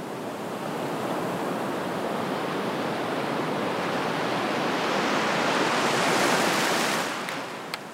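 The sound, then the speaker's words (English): Sea waves wash steadily onto an empty seashore beyond sand dunes, a broad hissing surge that swells louder toward the end before receding, with no voices present. “The next day, after my meeting with Monty and Margie, Susan and I decided to go to the sea, a 15-minute walk through the sand dunes.”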